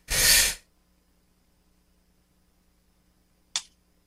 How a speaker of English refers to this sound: I have a sneeze coming on, guys. I don't know if I can do this or not.